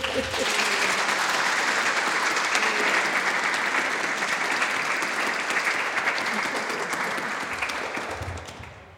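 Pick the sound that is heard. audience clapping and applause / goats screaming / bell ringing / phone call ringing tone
audience clapping and applause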